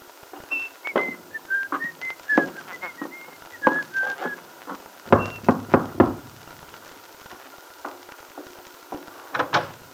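A person whistles a bright, cheerful little tune while going up the shallow steps of a little house in the Wakefield Auto Court, followed by a burst of sharp knocks and clatters, then a few more scattered taps.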